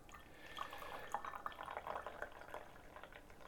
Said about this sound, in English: But let's have a look how the tea evolves when we pour the leaf tea. So I think we are now close to a minute. Let's just pour this.